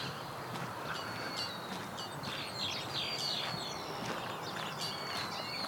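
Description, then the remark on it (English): Canada geese call in a scattered series of short honks over a steady wash of outdoor background noise. No one speaks. “There goes some Canada geese.”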